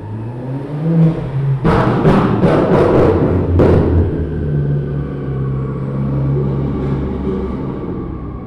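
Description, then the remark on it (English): Car engines rumble and whir steadily at a car meet in a Home Depot parking lot where cars spin donuts, with a cluster of sharp, loud bursts like revs or exhaust pops in the first few seconds before settling into a low, continuous drone. No one speaks. “Once I was up on the roof of the parking garage, the car meet was spread out before me.”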